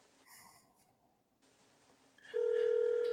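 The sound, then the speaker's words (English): A phone line quietly connects, then a loud, steady ringback tone starts near the end and hums on continuously: the ring of an outgoing call waiting to be answered. No one speaks. “Hopefully he'll answer. He may have shut his phone off to not interfere with the audio, but we're about to find out.”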